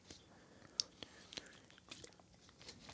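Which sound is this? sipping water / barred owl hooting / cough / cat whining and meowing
sipping water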